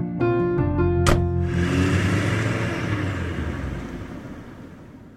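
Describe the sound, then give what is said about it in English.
A car engine starts up with a brief sharp click, then revs and rumbles steadily, its low hum gradually fading as the vehicle pulls away. No one speaks. “Then he hurried to hug his son and ducked into the car.”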